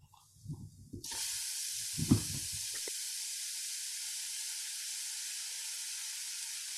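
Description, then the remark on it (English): A loud, steady sizzle like food hitting a hot pan starts abruptly and hisses continuously, with a few low clanks and thumps of cookware at the start. “Sizzling hot takes are brought to you by Dirt Burgers.”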